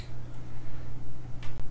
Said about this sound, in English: Just bite the beetle in half. Pick whichever end you want, and I'll eat the other half.